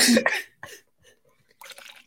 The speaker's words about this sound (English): What is this, an ASMR water pour?